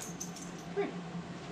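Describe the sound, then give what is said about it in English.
A puppy, a dog named Chester about 6 to 8 months old, moves around, with faint, scattered rattling of plastic balls hitting off the ground, light jangling clicks and one brief whimper-like squeak in the middle. No one speaks. “When it comes to the Mac and it comes to the picks, if you hear that rattling going on or any plastic balls moving anywhere, hitting off the ground, it is my dog, Chester.”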